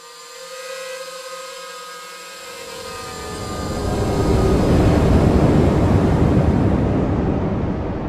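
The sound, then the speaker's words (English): A delivery drone bringing noodles hums overhead, a whiny, harmonic buzz at first that swells into a loud, rushing drone as it heads toward the listeners, continuing until the end. No one speaks. “the sound of a delivery drone started to buzz in the air heading our way.”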